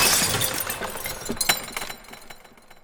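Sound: mirror glass shattering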